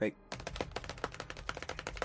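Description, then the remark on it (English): Scratching against the sides of boats: a rapid, uneven run of sharp, gritty scrapes and clicks, fairly loud and steady for about two seconds, after a brief muffled sound at the start. “Until it's too late, you start hearing the sound of scratching.”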